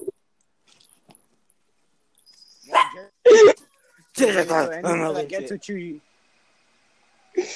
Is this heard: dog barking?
yes